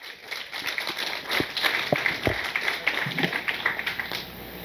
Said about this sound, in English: Thank you. A round of applause, please.